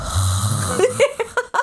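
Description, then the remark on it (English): A person imitates creepy heavy breathing: a long, raspy, rumbling inhale followed by several short, breathy huffs in quick succession. “It's just heavy breathing.”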